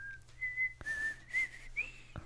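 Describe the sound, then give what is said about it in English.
A person whistles the slow, eerie theme melody of a TV series, with sustained pitched notes that slide between tones. It is clear, with a low steady hum underneath and no talking. “I probably shouldn't have whistled that.”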